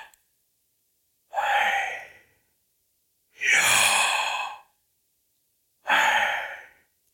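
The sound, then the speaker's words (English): Three slow, deep breaths, each a long airy whoosh like a heavy sigh, separated by a couple of seconds of silence. No one speaks. “It's you breathing.”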